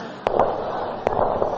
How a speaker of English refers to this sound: That's gunshots fired.